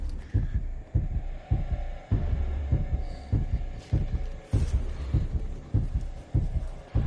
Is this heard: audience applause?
no